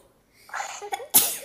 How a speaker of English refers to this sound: Oh, I need to sneeze.